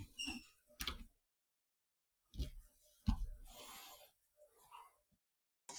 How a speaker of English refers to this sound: Sorry, this is me. My dog was snoring in the background. Hopefully you didn't hear that.